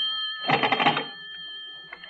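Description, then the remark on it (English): A telephone bell rings in one short, rattling burst over a steady high-pitched tone that continues after the ring fades. No one speaks. “I better answer it. It might be the operator.”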